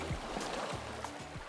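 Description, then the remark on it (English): Outdoor lakeside beach water ambience at St. Malo, Manitoba, on a hot day, with paddle boats and inflatables out: a steady wash of splashing, lapping water and low rhythmic churning, moderately loud and continuous, with no voices. “On a hot day on the beach in St. Malo, Manitoba, kids are building sandcastles, the paddle boats and inflatables are out,”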